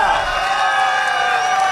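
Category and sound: crowd, crowd cheering and applause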